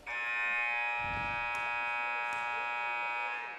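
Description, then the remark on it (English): A basketball buzzer marks the end of the third quarter of a Minutemen game, blaring as one long, steady, harsh electronic tone with a buzzing, harmonic-rich timbre, holding at constant loudness for several seconds before cutting off. “And the quarter will end right now.”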